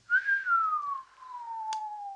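A single person whistles one sustained note that starts slightly higher and slowly glides downward over two seconds, clear, with a brief faint click partway through and no talking.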